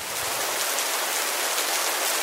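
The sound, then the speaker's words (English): A steady, dense patter of rain drums on a tin roof, a continuous hiss of countless drops at an even, fairly loud level with no voices. “So I'm going to try and put those sounds in the post edit. Cue rain on a tin roof.”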